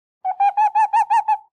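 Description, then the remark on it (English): Calls of two big snowy owls in a medium-sized pine tree: six quick, evenly spaced nasal notes with a buzzy, harmonic edge, fairly loud, with nothing else in the background. “There were two big snowy owls in the medium-sized pine tree that Barbara and Brooke had chosen.”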